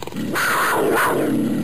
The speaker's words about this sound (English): Can we use this growl for the Florida Panthers?